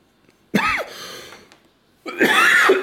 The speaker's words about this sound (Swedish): jag hostar och försöker. Ja, den hörde vi.